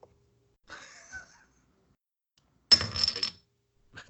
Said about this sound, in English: Who's flipping coins? Oh. Someone's flipping coins?